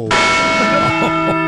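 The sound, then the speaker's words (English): A single loud Liberty Bell strike, used as a sound effect on the Armstrong and Getty Show, rings out and sustains, its layered metallic overtones humming steadily with a slight wavering beat as the tone lingers. “Again, the slapstick patriotism of Marshall, Squawky, and the Liberty Bell.”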